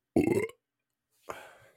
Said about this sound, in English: I burped on mic. Not even a good one, but, you know. Yeah, decent.